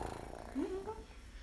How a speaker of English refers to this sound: If she come up to you, then it's like, okay. I can scratch on her. That little purring.